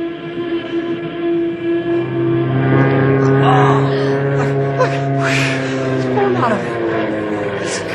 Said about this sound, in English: Great Scott! The plane's out of control!